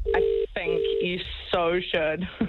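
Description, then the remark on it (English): A phone line rings out with two steady electronic ringback tones in quick succession, a call to a place on Richmond Road, heard through a thin, band-limited line while voices talk over and after them. “If he doesn't answer this time, I think that we should put producer Dan in a car and he drives down there and gives him the phone.”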